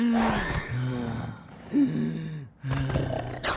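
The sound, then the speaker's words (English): A voice acts out labored breathing as a coronavirus symptom: three or four drawn-out, raspy, groaning breaths with gasping catches between them, fairly loud, with no other talking. “Third, trouble breathing.”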